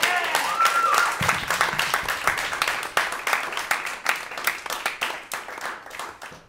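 An audience breaks into steady applause, a dense, crackling wash of many hands clapping that holds at a fairly even level for several seconds before thinning slightly toward the end.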